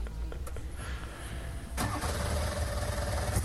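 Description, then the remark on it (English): A heavy starter motor cranks a big drag racing engine with a harsh, grinding whir, then the engine catches and roars to a loud, steady rumble. “That's a serious starter motor, isn't it?”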